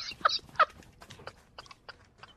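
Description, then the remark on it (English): A magpie indoors gives two loud, harsh rasping squawks in quick succession, followed by a run of quieter, scratchy chattering calls. No one speaks over it. “Ooh, well that sounded pretty scary because a magpie is not a small bird to yeah. mess with.”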